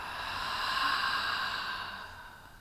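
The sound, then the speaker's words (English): A slow, deep breath in and out during a guided breathing exercise, airy, swelling softly and then fading away as the air is released, with no voices present. “Again, inhale and exhale.”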